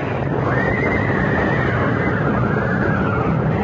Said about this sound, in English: Coming off the bridge, the lead horse panicked, pulling the whole rig to the right, so that what was coming was inevitable. The wheels on one side, passing over the projecting overground roots of one of the great trees, and in a moment...